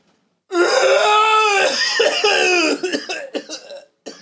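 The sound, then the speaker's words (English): A person imitates a monster's roaring scream: a loud, strained, sustained howl lasting about two seconds that breaks off into several ragged, choppy coughs and gasps. “However, others who have heard the monster describe it like a loud human, like roaring scream.”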